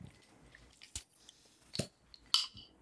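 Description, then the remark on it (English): A few sharp clicks and pops spaced about a second apart, the last followed by a brief hiss, as caps are pried off 0.33-liter beer bottles. “All right, you want to crack them open? Yeah, let's crack them open.”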